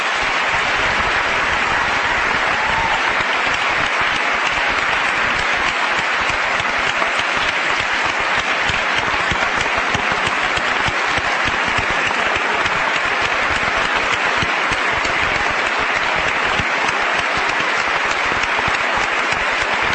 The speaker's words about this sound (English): Thank you very much for listening, and I want to thank our speakers again, and perhaps you'll give them all a round of applause.